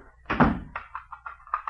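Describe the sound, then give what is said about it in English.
An apartment door thuds shut, followed by a quick series of small metallic clicks and rattles as the lock is turned. No one speaks. “Why are you locking the door?”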